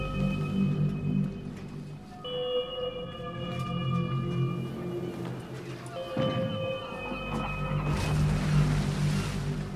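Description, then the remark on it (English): Ocean waves wash steadily around a ship at sea, a low rumbling surge rising and falling, with long, tonal horn-like calls sounding twice over the water. No one speaks. “Another beautiful day at sea.”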